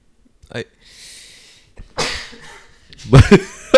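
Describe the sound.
A sneeze: a soft, hissing intake of breath, then a sharp breathy burst, followed by a louder, voiced explosive burst with a short tail.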